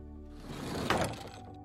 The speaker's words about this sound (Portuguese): Ao passo que os cinco entraram, a porta se fechou.